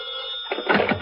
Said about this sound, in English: The telephone is ringing, and as Mike reaches for the receiver